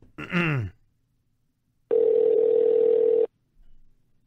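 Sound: telephone call ringing tone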